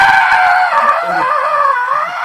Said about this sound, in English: Stop screaming, otherwise you won't be allowed fabs.